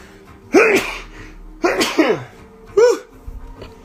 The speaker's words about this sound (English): I'm going to sneeze.